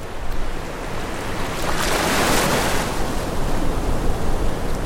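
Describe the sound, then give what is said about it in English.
Ocean waves break steadily on a shore, a broad rushing wash that swells to a peak midway and then eases back into continuous surf hiss, with no voices present. “Okay, intermission, where sea meets air.”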